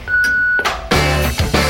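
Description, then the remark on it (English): The Mojo Radio Show's answering machine tone: a single steady, high-pitched beep held for about half a second, followed shortly by a loud burst of full, music-like sound. “But please, wait for the tone and the boys will be with you shortly.”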